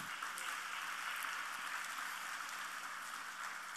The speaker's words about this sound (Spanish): Dele un buen aplauso al Señor si usted lo cree.